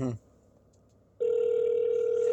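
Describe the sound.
A brief voice fragment, a short pause, then a steady, loud telephone ringback tone starts and holds unbroken to the end as an outgoing call rings.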